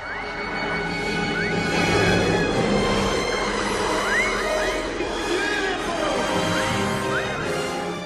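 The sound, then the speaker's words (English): Seal and dolphin calls recorded at a zoo and run through a vocoder, used for the ghosts when the Ark of the Covenant is opened, make a dense, buzzy, robotic drone, punctuated by short rising whistle-like chirps that recur throughout. It stays loud and steady, with no talking. “They went to the zoo and recorded seals and dolphins.”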